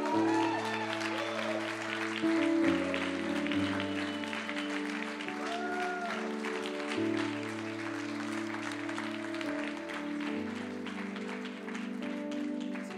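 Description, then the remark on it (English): A crowd gives a warm round of applause to a student speaker from Kiel, clapping steadily for several seconds, the dense patter of applause running under loud sustained music with slow shifting chords. “Can we give a warm round of applause for the wonderful, the mammoth,”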